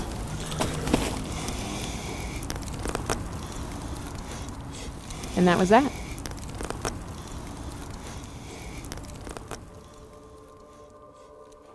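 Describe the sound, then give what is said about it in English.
A giant bonfire burning the crushed pieces of a sawed-up computer crackles and pops steadily through a dense rushing hiss, with a man's voice speaking briefly over it midway before the noise fades out near the end. “And dropped the crushed pieces into a giant bonfire.”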